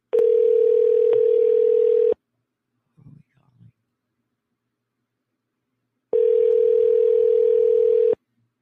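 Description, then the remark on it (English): A telephone rings twice on a radio show's call-in line, each steady electronic ring lasting about two seconds with a long pause between, and a brief faint murmur in the gap. “Pick up the phone.”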